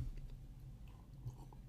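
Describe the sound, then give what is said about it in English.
A big swig of Laphroaig whisky: wet mouth and swallowing sounds over a low rumble, with no one talking. “A hefty swig of Laphroaig.”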